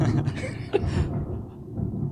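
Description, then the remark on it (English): A sinister roll of thunder: a deep, sustained rumble lasting about two seconds, with brighter crackling texture early on that fades, leaving a low murmuring growl. “Nice sinister roll of thunder after I talk about the concept of asking for money.”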